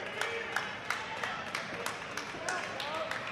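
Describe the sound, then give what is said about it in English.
A basketball crowd claps as Jeremiah Smith exits the game with 32 points after a foul, scattered, uneven claps over a steady wash of murmuring voices. The applause is moderate and fairly even throughout, with sharp clap transients popping out every fraction of a second. “He'll get a round of applause as he exits.”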